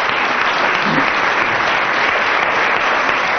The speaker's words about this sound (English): aided by approximately 10 minutes of applause from the audience